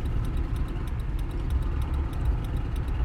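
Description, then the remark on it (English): Road traffic of cars on a street rumbles steadily, a continuous low engine drone like cars idling or creeping along, with a faint, regular ticking running over it and no one speaking. “And why do I have to come here when there's all these cars coming?”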